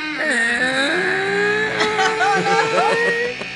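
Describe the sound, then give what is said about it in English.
A voice imitates a creaking door opening: a drawn-out, strained vocal squeak that wavers and bends in pitch for about three seconds, ending in a few wobbling glides. “It makes a bit of a creaking noise.”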